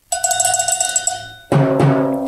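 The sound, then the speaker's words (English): Michael Savage strikes a cowbell in a quick series of bright, ringing metallic hits, then one louder, fuller clang that rings on to the end. No one speaks. “I have the drums and the cowbells here.”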